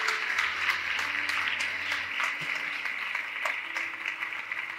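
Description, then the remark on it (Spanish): An audience claps strongly for the Lord for several seconds, a dense wash of many hands with sharp individual claps poking through, and a low hum sustained underneath. “Dale un aplauso fuerte al Señor en este día.”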